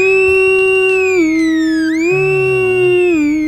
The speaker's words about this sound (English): Alarms going off, and these alarms are... there's a lot more of them, and it's a lot louder, almost piercingly so.